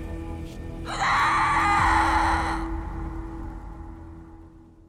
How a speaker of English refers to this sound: The story she has for us tonight happened on Halloween night in 2004, when one house in Napa Valley was transformed into a real-life horror movie that began with a terrifying, blood-curdling scream.